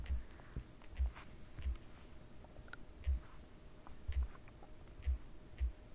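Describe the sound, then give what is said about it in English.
Soft, irregular tapping of keys on a keyboard, with muffled thumps and light clicks coming every half second or so at a quiet level and no talking. “Probably hear me typing it again.”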